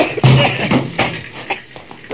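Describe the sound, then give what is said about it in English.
Men pound on a door to break it down and get into a lab that is on fire and full of fumes: a series of heavy, uneven thuds and bangs, a few strong blows mixed with smaller knocks and rattles. “We gotta break down that door.”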